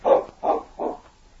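King, Sergeant Preston's dog, barks three times in a steady rhythm at a mining office after picking up a scent, each bark short and fairly loud, followed by a moment of quiet.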